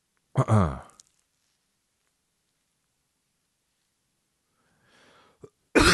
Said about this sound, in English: Now I got kennel cough.